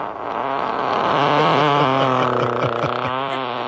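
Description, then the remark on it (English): A long, loud seven-second fart from a man with his legs in the air, a low, buzzy rasp that wavers up and down in pitch, sustained unbroken with no voices. “This is a 7-second fart from a man.”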